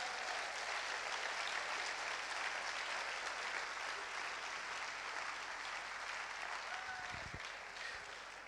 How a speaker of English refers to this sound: So I'm gonna invite my mom on stage so you guys can give her applause as she comes on stage.